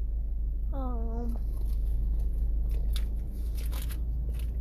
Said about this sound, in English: Munch, munch, munch, munch. I love a Milky Way, man.